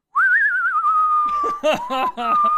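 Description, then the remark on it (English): In a silent movie theater, a person whistles a single sustained, slightly wavering note as a piece of paper blows by on screen; it starts with a rising flourish and holds steady, while other voices break into laughter underneath. “And as soon as that piece of paper flew by, my friend, he did a whistle.”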